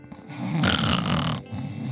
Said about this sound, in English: She was snoring. She was sleeping. I didn't want to disturb her sleep.